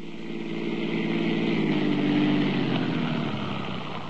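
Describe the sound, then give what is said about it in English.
A police car engine rumbles steadily, its low harmonic drone slowly shifting in pitch as the car eases to a stop in front of a house, with no voices present. “Dawson stopped the police car in front of my house.”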